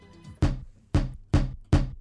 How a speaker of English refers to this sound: That's just a tub. She's banging two takeaway trays together.